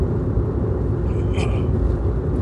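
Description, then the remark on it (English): A steady, loud low engine rumble fills the whole stretch as two Corvette sports cars drive past, with no clear rise or fade and no voices. “There are 2 Corvettes going by right now.”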